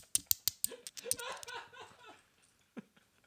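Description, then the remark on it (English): A few sharp, bright clinks of coins in quick succession, fairly loud, followed by someone making breathy vocal noises and laughing, then a final faint clink. “…'s reaching into his pocket. He pulls out 2 coins.”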